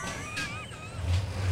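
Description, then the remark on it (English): A garbage truck full of glass, with a big mechanical arm, collects trash: its heavy engine's deep low growl swells near the end while high, wavering mechanical whines squeal over it. “I can't think of a way to make a noisier machine. It's just full of glass.”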